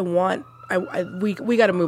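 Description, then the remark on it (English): An emergency vehicle siren wails outside, its pitch sweeping up and down in repeated cycles, fairly loud and steady for a couple of seconds. “Let me let that siren go away.”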